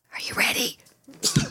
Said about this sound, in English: That was genuine. He sneezed and headbutted his mic. It just came out of nowhere.